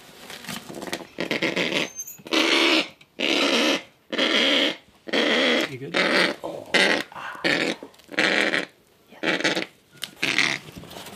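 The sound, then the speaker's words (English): A female kākāpō called Roha growls fiercely while being handled by rangers, defending her nest. She lets out a rapid series of loud, harsh, rasping bursts with brief gaps between them, about a dozen in all, with no talking. “Yes, yeah, she was in her nest and she's defending it pretty fiercely.”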